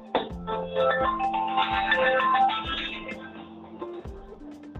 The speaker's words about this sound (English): Oh my God, just a minute. There's a phone ringing here. I'm so sorry, guys.